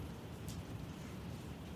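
Steady rain falls in a soft, continuous patter, a dense low wash of noise with no distinct individual drops, heard alone and fairly faint.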